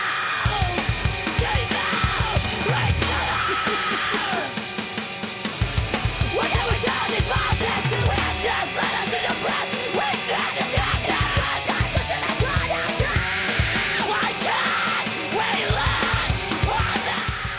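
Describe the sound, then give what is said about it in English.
A loud, dense punk track with pounding drums and distorted guitars, a raw screamed vocal yelling over the top throughout, the whole mix heavily compressed and relentless. “This is music for a screaming dad.”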